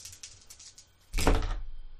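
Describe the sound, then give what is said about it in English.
Four dice, rolled for an intelligence roll in a tabletop role-playing game, rattle with a quick series of light clicks, then land with a louder clattering thud on a hard tabletop and settle. Fairly clear, with no voices. “And the dice are not cooperating, because I got 4 successes on 4 dice.”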